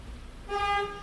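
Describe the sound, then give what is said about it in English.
A single car horn honks for about half a second, a steady harmonic toot from somewhere outside, over low rumbling background noise with no talking. “That car doesn't care about what podcast is happening.”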